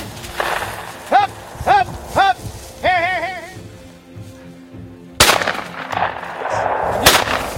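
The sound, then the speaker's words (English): Two sharp, loud shotgun blasts about two seconds apart ring out as a shooter fires at a flushed pheasant, after a series of harsh, rising squawking calls from the bird, with a low background murmur throughout. The bird is shot down and a dog is to retrieve it. “Safe off, gun up to your shoulder, shoot the bird, dog will bring it back, okay?”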